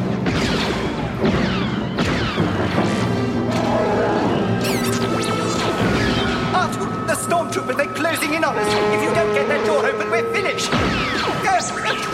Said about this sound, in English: And, attempting to escape to the Millennium Falcon, Leia, Lando, Chewbacca, C-3PO, and R2-D2 are trapped by a locked blast door. As Imperial stormtroopers open fire on them.